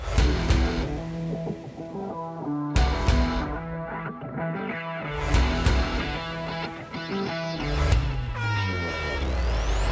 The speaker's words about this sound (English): You hear the air horn sounding, marking the final 2 minutes of the open red flag conditions.